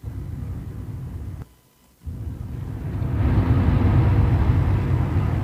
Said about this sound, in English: So we just sat in the car and got the sound of it. Now, that could be the car, it could be wind, it could be an engine.